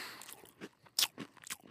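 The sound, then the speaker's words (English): Crisp crunching as pretzels are bitten and chewed, several sharp bursts in quick succession with short pauses between them, loudest around the middle. No talking. “I can bite part of one pretzel, then bite the side of another pretzel, and then I hook them together, and I can count that as one pretzel.”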